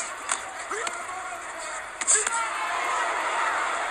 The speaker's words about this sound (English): Frazier grunting as he comes in with those punches.